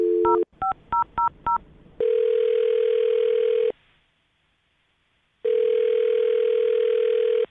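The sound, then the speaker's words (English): A telephone line: a brief dial tone, a quick run of about six touch-tone keypad beeps as a man's phone number is dialed, then two long, loud ringback tones separated by a few seconds of silence. No voices. “I'm going to dial his phone number right now.”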